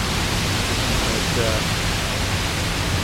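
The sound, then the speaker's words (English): Heavy, soaking rain that has been falling hard for about 20 minutes pours down in a dense, unbroken hiss, steady and fairly loud for the whole stretch, with no pauses or individual drops standing out. “So this, you know, this is still a good, heavy, soaking rain. I mean, it's raining hard, like, you know, full-on shower hard for this entire time, the last 20 minutes or so.”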